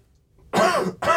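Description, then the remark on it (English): Two loud, harsh coughs right up against an open microphone on live TV during Fox's World Cup coverage, the first starting abruptly after near-silence and the second following quickly, both broad and raspy with a throat-clearing quality. “Let me just cough into it while someone else is talking.”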